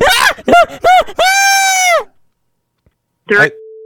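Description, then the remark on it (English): A woman screams loudly over a phone line, on the extension, in a rapid series of short, wavering shrieks, then one long sustained wail. After a pause, a final brief cry ends in a flat steady tone. “Can you get that lady off the extension and tell her to stop screaming?”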